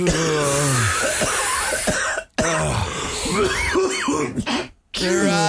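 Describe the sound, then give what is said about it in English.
Harsh, repeated coughing and throat clearing in raspy bursts with brief pauses between fits, after inhaling smoke from a rolled joint of pot. “You gotta cough if you want to get off, man.”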